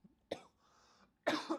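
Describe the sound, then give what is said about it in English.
A brief, sharp cough, then after a short pause a louder, longer raspy throat clearing, with no talking. “Had to clear my throat for that next part.”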